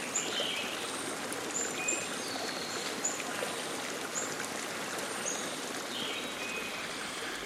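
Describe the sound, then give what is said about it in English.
A small mountain stream seeping from groundwater in the Catskill Mountain Range of New York State trickles and burbles steadily, a continuous wash of running water with faint bird chirps occasionally piping above it. “A trickling stream seeping from the groundwater flow in the Catskill Mountain Range of New York State.”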